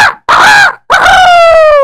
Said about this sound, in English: And the next morning came, the rooster crowed.